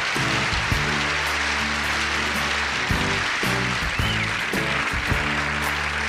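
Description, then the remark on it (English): A dense, steady crackle like a 1970s sitcom applause track runs throughout at an even loudness, layered over low, sustained musical chords that shift every second or so. No one speaks. “The 70s sitcom applause.”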